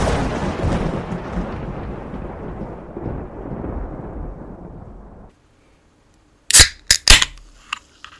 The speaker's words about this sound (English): Really, you're going to open the can right at the microphone? Listen, mate, I'll open the can right in your face in a minute.